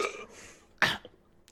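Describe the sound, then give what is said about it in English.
A person clears their throat in two short, raspy bursts, a longer one at the start and a sharper one partway through, with quiet gaps between. “Not like the kind of thing where you clear your throat.”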